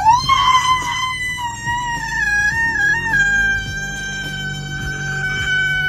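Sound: woman screaming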